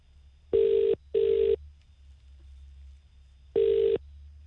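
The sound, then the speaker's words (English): A phone line rings out on an outgoing call made to call back a text message sender: a double burst of ringback tone, a pause, then another burst begins, steady and clear over a faint low hum, with no voices. “We're going to phone the text back right now to find out what way the message was intended.”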